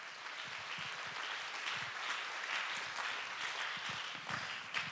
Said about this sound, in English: Somebody clap your hands and give God the praise.